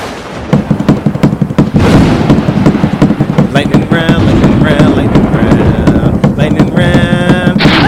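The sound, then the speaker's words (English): Rapid, heavy pounding on a table builds into a loud, continuous rumbling clatter that mimics thunder and pouring rain, with voices shouting and laughing over it. “Do you know how to make like a thunderous noise? Like the rain's about to come?”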